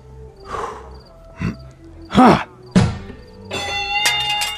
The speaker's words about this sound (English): It's not a trip to the carnival without hitting something with a mallet.